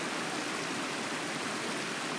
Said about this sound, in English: And this beautifully sparkling, pure, flowing water. So they are the same substance that's in this mysterious movement.